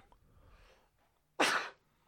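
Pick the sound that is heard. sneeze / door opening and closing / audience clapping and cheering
sneeze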